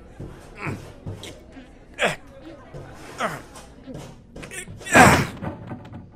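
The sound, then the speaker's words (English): Someone forces open a sealed door: a series of irregular heavy thumps and scraping shoves with strained grunts and gasps, building to one loud, forceful burst near the end. “what's with this door? That's the thing, sir. It's being sealed. I'm trying to force it.”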